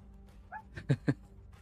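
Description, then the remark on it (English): A dog named Bella gives two quick, sharp barks in close succession, right after a brief high whine, against a quiet background with no one talking. “And Bella agrees, because you won't stop barking.”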